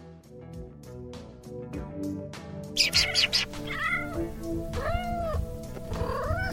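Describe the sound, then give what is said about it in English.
Kittens meow several times in quick succession, high-pitched, their rising and falling cries layered over a steady musical backing and a brief burst of noise partway through. “Why do kittens, puppies, and human animals play?”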